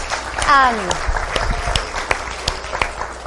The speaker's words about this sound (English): If you are a mother, can you just stand, please? Can we just honor you for a minute? Can we just give these ladies a clap for everything that they've done, everything that they have endured?